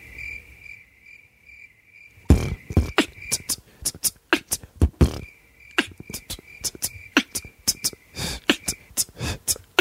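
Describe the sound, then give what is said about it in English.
Crickets chirp in a steady, high trill. After a couple of seconds, sharp, loud percussive hits, played on keys to make a beat, begin irregularly over the chirping. “We gonna freak this cricket shit up.”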